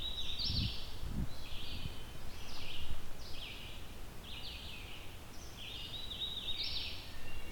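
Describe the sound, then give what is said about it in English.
A warbler sings a string of high, quick phrases, repeated about six times in a steady rhythm over a soft, constant background hiss, with a couple of low thumps early on. “As far as I can recall, this is one of those warblers that is not so friendly to people getting close to them.”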